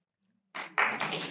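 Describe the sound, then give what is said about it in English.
After a brief hush, a crowd breaks into applause, a dense, steady patter of many hands clapping that swells quickly and holds at a moderate level. “Yeah, it deserves a round of applause.”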